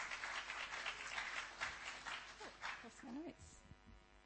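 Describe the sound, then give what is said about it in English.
An audience claps steadily, a dense wash of overlapping hand claps that continues throughout, with a few voices and cheers rising over the applause near the end. “Let's just give him another clap.”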